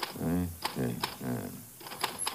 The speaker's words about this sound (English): I want to put a piece of paper in. There. Now. M-A-R-Y-H-A-D. You are typing the same phrase. Oh, yeah.